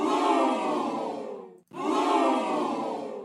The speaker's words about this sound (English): the United States Champion Theory. Boo! Yeah, let's hear some boos.